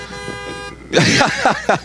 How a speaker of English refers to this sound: I don't have to wonder where that honk came from, folks. That's Debbie in the car down there giving me a amen.